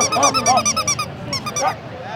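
Corgis bark at Corgi Con, a gathering of hundreds of corgis, in quick, high-pitched, overlapping bursts, a loud rapid volley that pauses briefly before a second round of yapping picks up.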